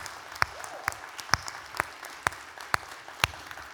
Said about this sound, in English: Will you all just give a big round of applause for all the dads? Come on, a little bit bigger round of applause for all the dads.